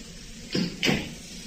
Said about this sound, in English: And the sound of the door being closed. Whoever had been in the room with me was now gone.